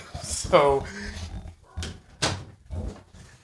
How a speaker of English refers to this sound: So there's this noise that then my older dog is responding to.